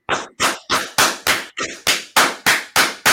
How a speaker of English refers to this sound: I don't know what it is. It's just a loud clap.